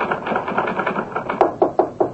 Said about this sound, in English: Oh, I heard your typewriter, so I knew you got in, finally.